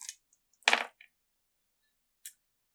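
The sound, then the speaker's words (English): A few sharp clattering clicks of dice rolled onto a hard table for a listen check, one louder burst in the middle, then a single small tap a moment later, clear with no talking. “Go ahead and just move these dice over here.”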